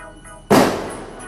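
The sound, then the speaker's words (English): A single sharp, loud bang like a firecracker or gunshot outdoors, close to a house, striking suddenly out of quiet background and trailing off in a short echoing decay. “I don't even know if that's a gunshot or that's a banger.”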